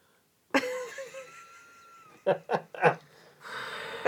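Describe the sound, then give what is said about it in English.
Molly, a pet, breathes heavily: a long wheezy, faintly whistling breath, then three short snorting puffs and a rough, raspy exhale. Fairly loud, with no talking. “Or she's breathing so loud. I don't know if the mic is picking it up or not.”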